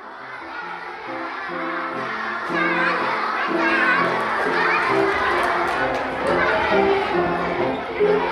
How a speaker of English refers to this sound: Children singing and dancing and stamping, indeed, in the hope that the Yule lad will hear this and be drawn to them.